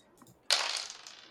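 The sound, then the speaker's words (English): Four dice are rolled, clattering and tumbling across a hard surface in a sudden bright rattle that gradually settles over about a second, with no one speaking. “So I'm just going to roll the 4 dice here.”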